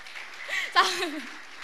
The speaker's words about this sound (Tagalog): Ayan, amen. Sabi ng mga katabi nila, ano daw, ba't pumapalakpak? Ayan.